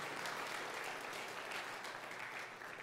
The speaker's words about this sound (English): And so I want to give it up for these people. Just give them a round of applause and welcome them to the family.